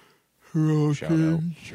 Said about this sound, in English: I'm yawning a lot today. I'm going to say, you're sleepy, dog. I am.